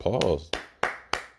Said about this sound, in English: Round of applause.